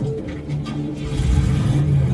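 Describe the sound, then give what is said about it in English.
A car engine revs up, its low droning hum swelling louder and rougher over a couple of seconds, with no voices. “Come on, it's not even my car!”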